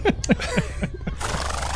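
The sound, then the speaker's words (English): A horse whinnies in a quick series of shrill, wavering cries that drop in pitch, loud, then fade into a steady rushing background noise. “So I'm kind of picturing like as she's kind of like kind of feeling her way towards, she looks behind the boxes and there's just a horse.”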